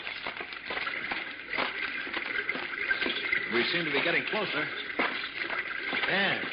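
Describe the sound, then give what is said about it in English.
A steady, rushing hiss of fast-flowing water fills the background, fairly loud and continuous, while a man speaks over it; the water is a small, swiftly flowing underground river. “Oh, I think I hear running water.”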